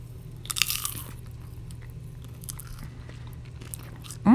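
A sharp, close-up crunch of someone biting into a dill pickle potato chip right into the microphone, followed by several softer crackling chews against a steady low hum, with no talking.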